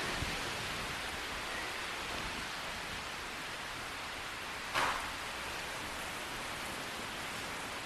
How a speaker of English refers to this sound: Hope you can still hear me. The rain and the storm.